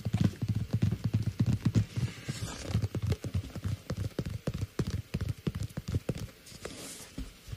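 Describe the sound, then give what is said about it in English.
Quick, irregular tapping on a Nintendo Switch console, a steady stream of sharp hollow clicks with a few brief pauses, fairly loud and with no voices. “Some good tapping.”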